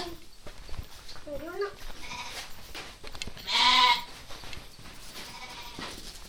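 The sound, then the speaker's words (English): A goat lets out a loud, wavering bleat lasting about half a second, standing out clearly over quieter background chatter and a few smaller animal cries. “That's right, goat.”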